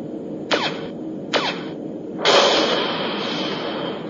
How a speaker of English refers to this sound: Multi-phase cannon targeting high-risk probability ship. Ready to fire on your command, Captain. Fire cannon.